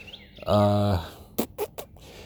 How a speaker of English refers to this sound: I'm hoping that this stupid fucking tweeting of these birds doesn't distract from my soothing, gorgeous voice. You know? Nature is so grating.